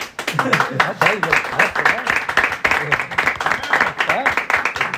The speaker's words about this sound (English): I'm upset that you're clapping even, but thank you.